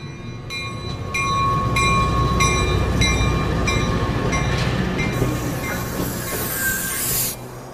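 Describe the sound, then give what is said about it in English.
A moving passenger train rumbles along the rails with a steady low roar, its wheels clicking over track joints at a regular beat, then a rising hiss and a brief high wheel squeal near the end. “I've been spending all my time worrying about this train and its passengers.”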